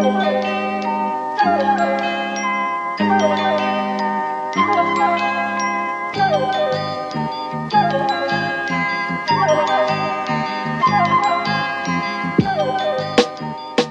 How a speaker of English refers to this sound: It's almost time for Christmas. I can hear those sleigh bells ringling, jing, jing, jingling too.